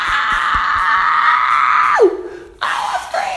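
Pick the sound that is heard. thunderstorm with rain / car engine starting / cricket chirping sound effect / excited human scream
excited human scream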